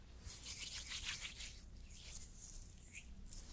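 Soft, gritty rubbing of facial scrub worked over skin in quick repeated strokes, a steady scratchy swishing that gives way to a few lighter, gentler rubs. No one speaks.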